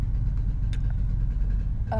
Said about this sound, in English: There's a guy with old motorcycle, I guess.